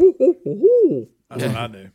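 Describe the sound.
A person's voice imitates an owl, giving two short hoots and then a long, rising-and-falling hoooo, fairly loud, followed by a burst of talking or laughter.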